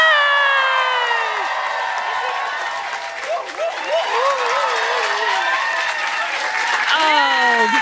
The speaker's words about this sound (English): And now, please give an exquisite Soho West End glittering feet stomping. Feet stomping? Stomp those feet. Hands clapping, arms pumping, foot clapping. Please welcome to the stage the incredible James Acaster!